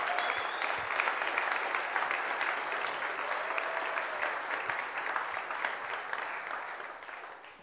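An audience at a church claps steadily for several seconds, a dense, even wash of hand claps that holds its level and then tapers off slightly toward the end.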